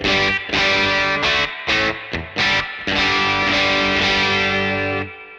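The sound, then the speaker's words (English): A Stratocaster electric guitar played into a Vox AC15 amp with a little breakup and a spring reverb, with a lightly overdriven, slightly gritty tone, plays a series of strummed chords with short gaps between them, ending on a sustained chord that rings out and fades. No one speaks. “And now I'm using a Stratocaster and I'm running into a Vox AC15 where I'm getting a little breakup.”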